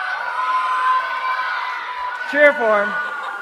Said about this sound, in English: Now, you have to cheer for your leader real loud, because I think the louder you cheer, the better they'll be able to blow the balloon up.